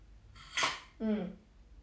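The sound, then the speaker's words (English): A quick, noisy sip of water from a glass that is mostly ice, with a brief rattly burst like ice shifting, followed by a short, low voiced sigh after swallowing. “Hang on, I gotta take a sip of my water, just a moment.”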